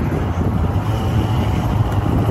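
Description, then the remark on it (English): A moped ridden one-handed over loose gravel on the way to the airport: a steady, loud low engine drone with a constant rough rumble and some wind noise, no pauses and no voices. “this loose gravel's a motherfucker for a moped one-handed.”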